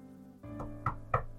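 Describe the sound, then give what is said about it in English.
Three knocks on a grandmother's wooden bedroom door in a steady rhythm, moderately loud, over a low humming background, with the second and third raps landing harder than the first. “I knocked at her door.”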